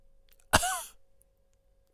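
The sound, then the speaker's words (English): A single harsh cough bursts out, abrupt and fairly loud, trailing off with a raspy voiced tail before quiet returns. “Why are you coughing?”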